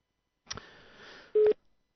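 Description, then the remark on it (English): A phone line hisses with static, then a single short, loud ringing tone beeps once, a steady mid-pitched burst on the line before it falls quiet again: an international, non-Australian ringtone heard when calling a local number that is diverted internationally. “International diversion on a local number. Because that's not an Australian ringtone.”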